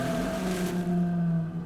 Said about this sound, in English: This was Cetus, a horrific beast covered in scales. Its serpentine tentacles flailed about as its slimy beak gnashed at the air. The dragon of the deep let out a second scream before turning on Andromeda, who stood trembling on the mountaintop.